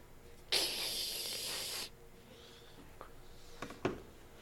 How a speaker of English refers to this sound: Like I'll spray you with Lysol.